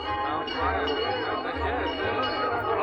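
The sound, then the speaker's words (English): A lively crowd gathered to hear the news of the day chatters continuously in the marketplace of a tiny village near Paris, France, in 1750, many overlapping voices blending into a steady murmur, with faint clinks and jingles scattered through the hubbub. “In the marketplace of a tiny village near Paris, a gay crowd has gathered to hear the news of the day.”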